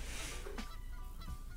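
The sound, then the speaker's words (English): A voice imitates a goose, letting out a couple of loud, raspy honks with an eerie, drawn-out quality, over a steady noisy background and with no talking. “Sounds like a haunted goose.”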